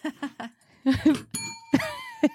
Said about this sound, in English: I think we need like a little swear jar or something. I have a bell.